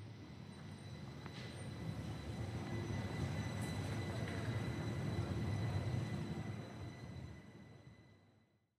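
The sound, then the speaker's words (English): A tram rumbles past, its low rolling noise swelling steadily to a peak and then fading away, with faint high metallic whines from the wheels and no voices. “I was left standing with my microphone extended, recording his silence as the tram passed by.”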